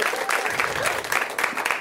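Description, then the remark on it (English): A burst of audience applause, dense and steady clapping from a crowd, loud throughout the short moment with no talking over it, given for the show's absent co-host Cameron Esposito. “So give it up for her.”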